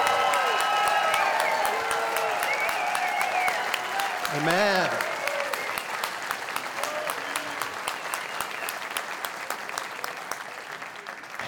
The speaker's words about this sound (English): Amen. That is the best cheering that's going to happen today. No, seriously, because this is cheering for the King of Kings and the Lord of Lords, the one who is already victorious.